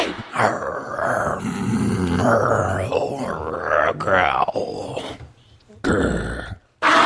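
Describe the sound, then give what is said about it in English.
Several people growl and grunt in imitation, rough throaty voices overlapping loudly in a continuous rumble with rising and falling pitch, ending in a brief pause and one last burst. “Those were some growls.”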